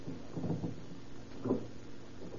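A locked connecting door to the other half of an apartment establishment being tried: two dull, muffled rattles of the handle and latch, a longer one followed by a shorter jolt a second later, fairly quiet and with no one speaking. The door is locked from the other side.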